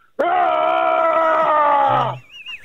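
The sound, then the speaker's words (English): A man imitates a Shrek-style roar: one loud, sustained growling bellow lasting about two seconds at a steady, strained pitch, then it cuts off abruptly. “give us a rendition of the big Shrek roar that you went for?”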